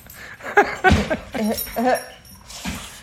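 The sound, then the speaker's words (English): A dog vocalizes in a quick series of short yelps and whiny, wavering cries, a few sharp bursts followed by longer drawn-out sounds, with some background noise. “hold on, I have to watch my dog, huh?”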